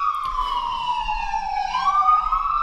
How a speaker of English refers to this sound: I think that's an ambulance. Or ambulance. Or something. That's an ambulance.